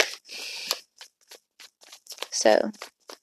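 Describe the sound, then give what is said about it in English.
Tarot cards being shuffled during a reading: a dense papery riffle at the start, then a string of quick soft flicks and taps, with a voice speaking briefly midway. “still shuffling the cards.”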